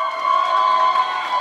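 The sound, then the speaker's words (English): A crowd of people cheering and whooping together in a hallway of the Hague District Court in the Netherlands after a corporate lawsuit against Royal Dutch Shell, a steady loud wash of excited voices with no single speaker standing out. “Corporate lawsuits don't typically end with people pumping their fists in the air or openly cheering in the hallways.”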